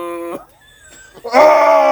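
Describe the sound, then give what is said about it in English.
A loud, strained human scream with a rough, throaty edge, cut off briefly and then let out again even louder and raspier, with no talking. “Just a guttural scream.”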